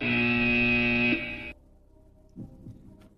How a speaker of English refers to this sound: Greg Beekert. You can give him the buzzer.